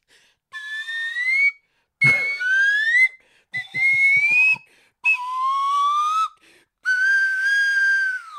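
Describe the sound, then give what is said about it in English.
A slide whistle plays five long, loud notes separated by short pauses, each tone sliding slowly up or down in pitch. There is no talking. “Dude, that's the longest slide whistle.”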